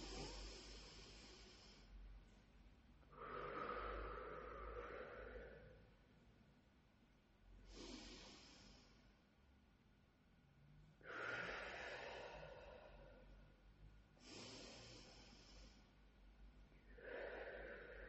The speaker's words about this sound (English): So please take a few moments to breathe deeply with me in through the mouth and out through the nose.